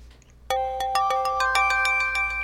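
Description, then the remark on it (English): A device being set up, with a green light on, sounds a quick run of bright electronic beeps. Sharp pulses rise into a ringing, tuneful chime that keeps going over a low steady hum. No one speaks. “Right, so we got this we got like a beeping thing, so it looks like it's got a green light on, so it looks like this shit's all good to go, so I'll leave you to it then.”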